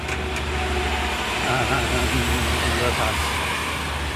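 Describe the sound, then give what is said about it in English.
A truck is passed on a narrow mountain road in Nepal while heading up the mountain: a steady, heavy engine roar over continuous low road rumble, the noise holding fairly constant throughout, with faint muffled voices underneath. “We're just passing a truck now.”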